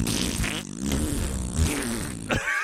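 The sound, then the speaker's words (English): A voice imitates diarrhea with mouth-made wet, sputtering raspberry noises, a continuous buzzy, gurgling stream of flatulent bursts lasting a few seconds, fairly loud, ending in a breathy hiss. “We knew instinctually that, yes, it has diarrhea sounds.”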